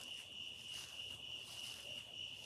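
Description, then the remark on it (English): A continuous chorus of chirping insects, likely crickets, at dusk as it starts to cool off in Seoul Park, Ojai, California, ringed by sycamores and oaks, with a steady high-pitched trill running throughout and a dense shimmering hiss layered above it. No one speaks. “It's just starting to cool off. You can hear the insects.”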